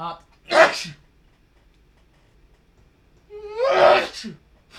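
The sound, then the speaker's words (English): Two sharp, explosive sneezes a few seconds apart, the second preceded by a quick rising inhale, with near silence between them. “I'm gonna sneeze.”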